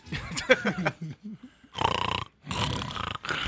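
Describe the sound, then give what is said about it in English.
A man makes a few short throaty grunts, then two long, rattling snores, each a loud, raspy drawn-out breath with a brief pause between them. “No, no, he's snoring.”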